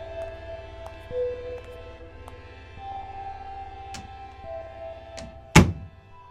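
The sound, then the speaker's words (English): A bathroom stall door swings shut with one solid thunk near the end, after a few faint clicks over a steady low hum. No one speaks. “Hannah locked the door of the bathroom stall behind her.”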